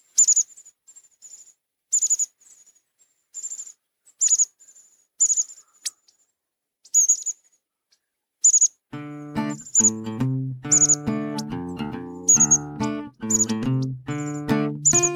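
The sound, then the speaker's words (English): American Bushtit calls: thin, high-pitched chips and twitters in short irregular bursts, clear, later joined by a sustained low, buzzy harmonic drone underneath. “And it's time now for our bird of the episode, the American Bushtit.”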